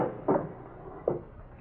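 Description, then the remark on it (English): A drawer is pulled open: two short, muffled wooden knocks about a second apart, over a steady low hiss with no voices. “In that drawer over there. Yeah, this one over here?”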